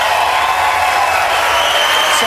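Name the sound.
crowd applauding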